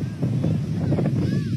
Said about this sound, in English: That was sound from a TikTok video of the massive barge sailing into Pier 66. But at first, it was headed a little bit south toward the Seattle Aquarium and Great Wheel